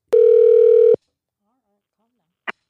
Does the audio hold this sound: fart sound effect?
no